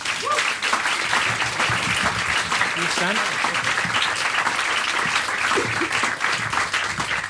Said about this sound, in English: Thank you very much. It always bodes well when an audience applauds before you speak. I like that. A good start. You can keep that up.